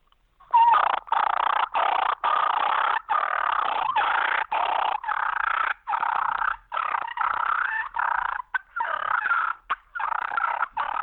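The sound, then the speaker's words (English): A rough, rattling turkey challenge purr made on a mouth call, a continuous raspy trill broken by brief pauses for about ten seconds, fairly loud with no talking. “Just challenge purr on a mouth call.”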